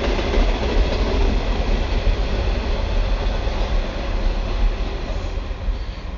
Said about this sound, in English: And as a train goes past, thank you for your patience.